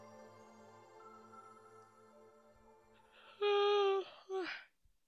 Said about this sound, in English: Oh my goodness. I think this is a personal record for the amount of yawns I've yawned while we're live. I'm very sorry.